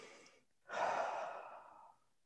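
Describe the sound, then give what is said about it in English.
A brief soft breath, then a pause and one long, audible, airy breath in, swelling quickly and fading out over about a second, with no talking. “Breath, breathing in.”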